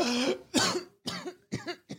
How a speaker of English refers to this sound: Flask of Wine coughs and splutters.